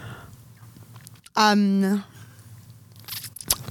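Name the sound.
chewing food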